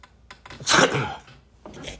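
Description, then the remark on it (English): A single loud sneeze bursts out sharply, followed by a brief breathy exhale and a short sniff-like sound afterward. “Excuse my sneeze.”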